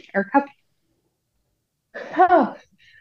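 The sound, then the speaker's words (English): A single sharp sneeze bursts out after a couple of short breathy catches and a pause of silence. “I'm so sorry. Bless you.”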